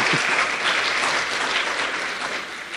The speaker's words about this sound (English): Woohoo! Give them a clap. Come on, give them a hand. Yes.